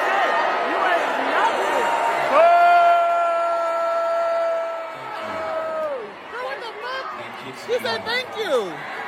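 A concert crowd boos in a long, sustained, droning wave that swells loudly for a few seconds, then breaks up into scattered shouts and cheers.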